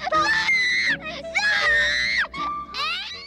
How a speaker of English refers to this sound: He acts exactly as a kid, I think, would act. He starts crying and whining and screaming exactly like a kid.